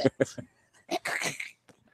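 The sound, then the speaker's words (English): A person coughs after inhaling cigar smoke: three quick, harsh bursts, a short pause, then a longer raspy coughing fit that trails off into a few faint throat sounds. “It bothers our listeners that have to listen to you cough every single week.”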